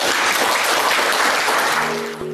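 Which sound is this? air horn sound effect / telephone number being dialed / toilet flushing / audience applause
audience applause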